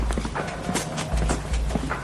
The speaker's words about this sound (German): Es nähert sich jemand von hinten. Und dessen Schritte werden immer lauter.